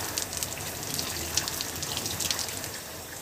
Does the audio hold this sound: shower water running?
yes